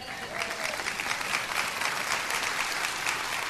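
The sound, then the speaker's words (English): An audience claps steadily throughout, a dense, continuous patter of many hands at a fairly loud, even level with no voices standing out. “You should be clapping at that.”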